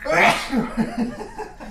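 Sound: sneeze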